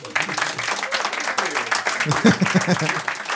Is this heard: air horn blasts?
no